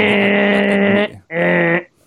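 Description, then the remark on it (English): A game show buzzer blares twice: a loud, harsh, steady buzz lasting about a second, a brief gap, then a shorter second buzz at the same flat pitch. “That's the buzzer sound, okay?”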